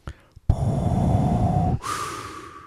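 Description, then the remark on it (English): Up close, someone imitates Darth Vader's heavy respirator breathing as a joke 'southern cousin' called Darth Vaderino: a loud, rasping drawn-out inhale followed by a hissing, whistly exhale, after a couple of short breathy sniffs. “This is the southern cousin of Darth Vader. Darth Vaderino.”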